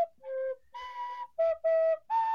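A recorder plays a short, halting run of about six breathy notes, stepping between a few pitches with brief gaps, fairly loud with no talking.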